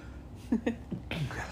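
A sudden sneeze bursts out after a few short breathy vocal sounds, loud and noisy, with no talking around it.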